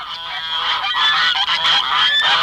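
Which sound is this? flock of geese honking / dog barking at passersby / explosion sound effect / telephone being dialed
flock of geese honking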